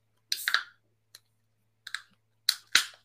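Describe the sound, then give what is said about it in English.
A few sharp metallic clicks and short bursts of fizzy hiss, ending in a louder crack and a brief rush of hiss as a can of beer is pulled open. No one speaks. “I'm afraid to open this beer because the last beer I opened, the fizz or the foam went all over the place.”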